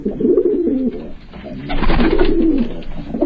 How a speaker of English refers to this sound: That would be the rock pigeon, often just called pigeon or common pigeon. In your old Peterson's or Golden Guide, it's the rock dove. But in newer field guides, the name appears as rock pigeon.